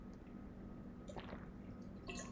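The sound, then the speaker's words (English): Quiet liquid sounds of someone drinking water: a short wet gulp and swallow, followed by a brief splashy slurp near the end, with no talking. “I'm just gonna take a swig of water, guys.”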